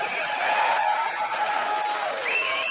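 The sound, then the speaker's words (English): A live audience cheers and applauds in a steady, dense wash of clapping, with shouts and whoops rising above it throughout. No one speaks over it. “There's a reason people are cheering.”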